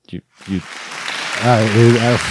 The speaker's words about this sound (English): You'd like to thank me for saying it. Okay. Jeez, I'm getting thanked. I'm getting applause. Mm-hmm. Mm-hmm. positive reinforcement. Wow. Some shouts. Yeah, these guys are getting a little rowdy.